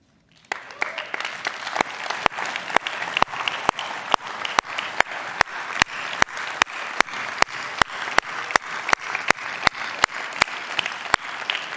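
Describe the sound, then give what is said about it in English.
A church audience applauds steadily for about twelve seconds as members who were part of a group of 350 people back in 2006 stand up, a dense wash of clapping with sharp accents landing in an even rhythm roughly twice per second. No one speaks over it. “We're applauding your obedience to allow God to work through you.”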